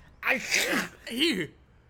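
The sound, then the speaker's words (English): A small bird with flu sneezes twice in quick succession, fairly loud, each burst a breathy squeak with a sharp voiced chirp sliding through it, then quiet. “He sneezed on me.”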